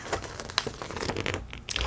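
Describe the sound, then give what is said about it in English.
Magazine pages being flipped, a quick run of soft papery rustles and crinkles with a few sharper swishes, no voices. “Soft Spoken • Page Flipping • Writing”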